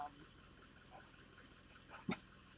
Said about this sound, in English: Good girl, come here! Come here! Come here! Right here! Come here. Sit. No, sit. Good dogs. Good dogs.